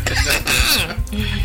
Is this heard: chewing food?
no